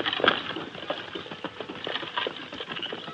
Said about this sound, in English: In less than an hour, the Lone Ranger and Tonto heard the slow walk of oxen and the creaking of a heavy wagon. Peering through the screen of brushwood, they saw the load of rifles moving south.